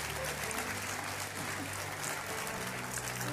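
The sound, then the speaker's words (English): A crowd claps steadily and loudly for several seconds, a dense continuous wash of many hands with a faint murmur of voices underneath. “Give them a great big clap offering.”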